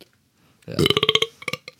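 A loud burp rumbles for about half a second with a rapid rattling pulse, trailing off into a few short, croaky gulps.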